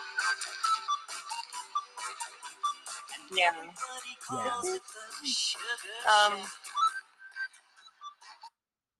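A thin, tinny oldies pop song plays back over a phone line, with steady percussive hits, a singing voice and a whistle-like melody, ending abruptly after about eight seconds.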